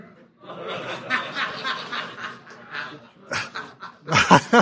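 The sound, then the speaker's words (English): A puppy whimpers and yips, a steady run of thin, high whines that pauses briefly, then breaks into sharper, louder yelps toward the end. “And the little boy smiled, and he stood up and said, "It's a puppy."”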